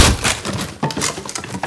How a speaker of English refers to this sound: You just knocked him out with that conveniently placed and fairly fragile chair.